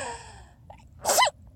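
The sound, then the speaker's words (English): A single sharp sneeze bursts out, preceded by a brief breathy intake, then quiet returns against a low background hum. “Bless you.”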